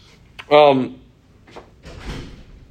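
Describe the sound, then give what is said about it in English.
A door swings shut with a brief, tonal creak, followed by a couple of soft, muffled knocks as it settles closed. “We have a door closed on us.”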